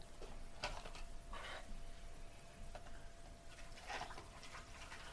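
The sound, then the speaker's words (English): A drink is poured into a second cup of ice, heard as quiet, intermittent splashy bursts and faint crackling over a low steady hum, with no voices. “Is there a certain way to pour it?”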